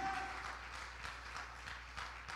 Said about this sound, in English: Hallelujah. Let's clap our hands and thank the Lord.